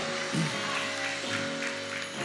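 An audience claps their hands together as a hand clap offering of praise to the Lord, a steady, dense wash of applause that holds at an even level, with sustained musical tones humming underneath.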